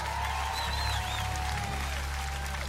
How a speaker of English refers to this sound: Yeah. God bless everybody. God bless you all. Come on, give Jesus a big old hand clap.